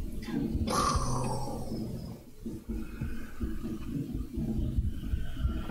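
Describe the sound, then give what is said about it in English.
A vampire growling sound effect from Sirenscape, heard down the hall: a harsh, raspy snarl bursts out near the start, then settles into a long, low, rumbling growl that rises and falls unevenly for several seconds. “That sounds like the vampire. That's what you're hearing down the hall.”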